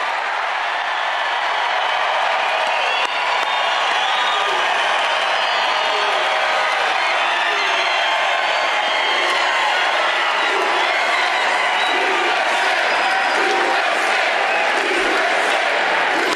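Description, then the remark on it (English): A large crowd at a Trump rally cheers and whoops without pause, a loud, dense roar of many voices with scattered shouts rising above it, holding steady throughout. “Big and engaging crowd.”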